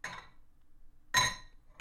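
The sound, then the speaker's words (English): A brandy bottle clinks against a glass three times at uneven intervals, each a bright, ringing chime that fades quickly, with quiet pauses in between and no voices. “Maybe I should take the brandy down.”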